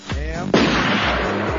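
A low droning hum gives way to a single loud gunshot blast whose noisy, rumbling echo rolls on and fills the rest of the moment.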